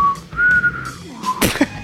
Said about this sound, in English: I can't whistle very good. I need to lick my lips. I need to get it moist.